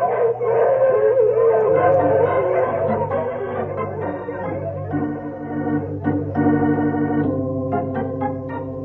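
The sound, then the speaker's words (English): A team of sled dogs, including Skeeter, howls loudly and continuously while pulling a sled through deep snow, several voices overlapping in long wavering tones, with a few shorter yips breaking in toward the end. “So I'll break the trail for the dogs.”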